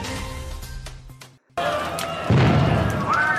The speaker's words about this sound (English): The Phil Jackson balloon has exploded. Oh, my humanity. This is the worst thing I've ever witnessed.